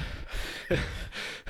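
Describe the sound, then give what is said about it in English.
A person imitates heavy panting, pushing out three or four loud, breathy huffs in quick rhythmic succession, with no words. “I think your heavy breathing just sparked the memory.”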